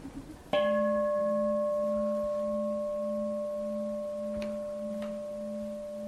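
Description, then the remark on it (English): A single bell is struck once and rings on with a steady, pure, layered tone that slowly fades over several seconds. A couple of faint clicks come late in the ring. “So the bell is a thing. Whereas the bell is a process, look.”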